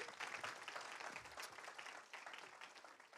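A crowd applauds, a dense, steady wash of many hands clapping at a modest level that tapers slightly before a sudden sharp sound at the very end.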